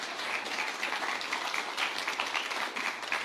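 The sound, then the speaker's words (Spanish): An audience at a Spanish-language sermon applauds steadily for a few seconds at the preacher's call, a dense, even wash of many hands clapping at moderate loudness with no voices on top. “¿Van a aplaudir o van a aplaudir?”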